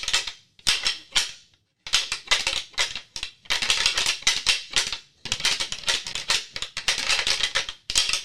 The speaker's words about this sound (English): Grind those antlers, and I rip them apart off away from each other. And then I'll ditch the antlers, and I'll be ready to hunt, and I'll be looking for deer.